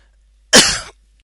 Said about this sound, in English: Sorry, I had to cough there. Oh dear, that was nasty.